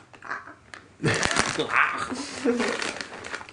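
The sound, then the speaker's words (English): A plastic snack bag of sour gummy worms is torn open and crinkled, a loud, bright rustling that starts suddenly and continues steadily, with voices murmuring underneath. “Speaking of, let's open up these sour gummy worms.”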